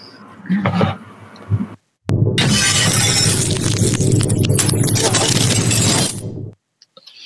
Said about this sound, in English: Let's just see if I can find my... my breaking news sort of news flash